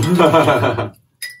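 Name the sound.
coffee mugs clinking together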